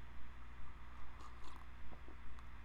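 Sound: sipping coffee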